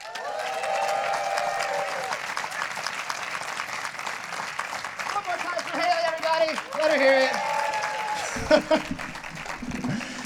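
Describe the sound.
Sustained applause and cheering from an audience at Story Story Late Night as a performer is brought up, a steady wash of clapping with whoops and raised voices rising above it, continuing loudly for about ten seconds.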